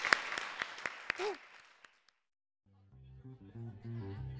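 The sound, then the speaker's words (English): An audience claps and applauds briefly for a guest at the end of a conversation, the sound tapering off within two seconds, followed by a short silence and then steady music starting up. “And a big round of applause for Cody Keenan.”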